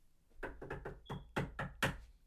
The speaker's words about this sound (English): Let's talk about knocking real quick. How do you knock? I mean, tell me the process. How do you guys knock? Like, do you ring the doorbell? Do you go like this? Do you go like this? Or do you go like this? How do you knock?